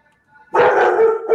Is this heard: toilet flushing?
no